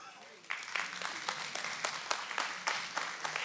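A church audience breaks into applause at the end of a sermon after a brief quiet moment, many hands clapping in a steady, dense patter that holds at an even, fairly loud level throughout.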